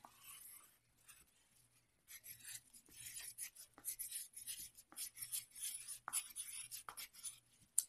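Scratchy strokes of a pen or pencil as children write on the top of their paper, coming in quick irregular bursts with short pauses, fairly quiet, with no voices.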